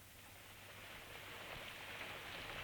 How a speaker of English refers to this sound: Still raining. We needed it.